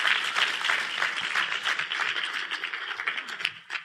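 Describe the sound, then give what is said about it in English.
An audience applauds a man steadily for a few seconds, a dense patter of many hands clapping evenly before tapering off slightly at the end. “Let's give him another great big applause.”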